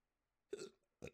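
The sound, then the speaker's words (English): Two quick, voiced hiccups, the first slightly longer, separated by a brief pause. “Peanut butter is supposed to help with hiccups, really?”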